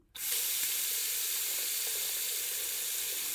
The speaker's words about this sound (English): The water is running again thanks to our very own DIY handy expert, Chicken!